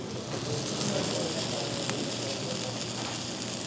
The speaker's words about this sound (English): On top of that, fresh, thinly sliced cabbage and carrots, kind of like coleslaw mix. Finally, some shredded cheese. And it all comes out on the steaming hot platter. The whole thing smokes up the room and crackles as it comes towards the table.